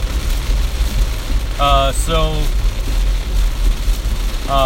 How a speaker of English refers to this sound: Wow. Sorry, this rain is really coming down now. It's going to be a little loud. But I'll just keep talking. It's like the first one I've ever done in a real downpour, I think.